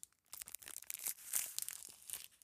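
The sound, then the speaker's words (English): A York candy wrapper is torn open in a quick burst of crinkly, crackling rips, bright and hissy, lasting a couple of seconds with no voices. “If anything, if we don't want York to succeed, just know that their wrapper break is unmatched.”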